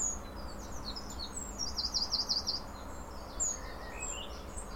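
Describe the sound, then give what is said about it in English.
Birds sing by the waterside in the evening: a quick run of five or six bright chirps stands out midway, with scattered fainter calls around it over a soft, steady outdoor hush. No one speaks. “We've sat by the waterside for 20 minutes and we've heard a lot of bird song, and it's been a beautiful evening”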